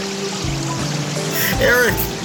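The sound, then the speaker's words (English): Rising water trickles and flows steadily, nearly reaching a person's feet, a continuous wash of noise that swells slightly toward the end, where a brief voiced sound rises over it. “The water is nearly at my feet now.”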